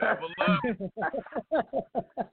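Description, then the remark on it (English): A video game level-up sound effect: a brief swooping flourish followed by a quick run of short, evenly spaced bright tones, fairly loud, with no talking over it. “Can I give him the level up? He got the level up.”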